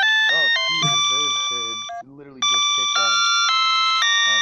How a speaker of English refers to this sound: Let's hear that music. This is the theme music off of the title song. And it is as sharp and painful as it sounds. This is maximum quality recording right now.